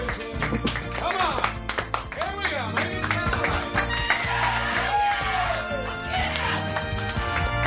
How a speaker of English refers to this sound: Wow! All right, everybody, nice round of applause.